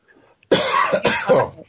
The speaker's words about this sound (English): I got the whooping cough. I got the whooping cough.